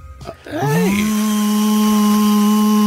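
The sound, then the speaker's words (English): A hair dryer switches on, its motor whining upward in pitch before settling into a loud, steady whirring hum with a rushing airy hiss that continues without pause. “Hey, hair dryer.”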